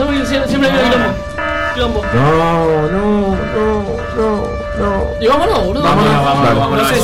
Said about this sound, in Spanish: ¿Qué está pasando? Siempre la misma alarma, nos tenemos que ir.